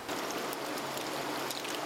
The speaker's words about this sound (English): The onion is chopped swiftly and bathed in ice water to remove the slime.